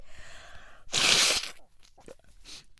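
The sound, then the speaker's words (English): A loud, hissing nose blow lasting about half a second, followed by a few faint sniffly rustles and a shorter, softer second blow near the end. “Let me blow my nose before we just dive into this bad boy.”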